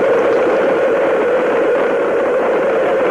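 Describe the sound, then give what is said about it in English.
Space shuttle main engines roar steadily at launch, a loud, dense, unbroken rumble with a rushing hiss on top that holds constant throughout, with no voices. “T minus 10, 9, 8, 7, 6, 5, 4. We've gone for main engine start. We have main engine start.”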